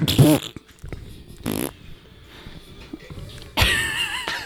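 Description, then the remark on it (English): A short burst of farting noises, three separate blasts spread across a few seconds, fairly loud, with quiet rustling between them. “He just farts.”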